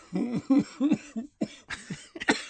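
A loud fit of repeated coughing: several harsh, partly voiced bursts in an uneven cluster over a couple of seconds, with no talking.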